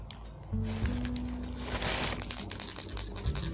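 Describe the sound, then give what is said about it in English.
A Sunday school hand bell, rung to mark Sunday school time at a church in Dallas, Texas, rings with a bright, high metallic tone. It starts with a brief strike, then swells into sustained, repeated ringing that grows louder toward the end, with no voices. “And I know you hear me opening up the bag, but I must ring the Sunday school bell.”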